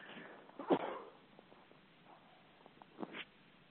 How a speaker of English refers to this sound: At least I thought it was a quick commercial. Maybe not. That was my quick commercial sneeze break.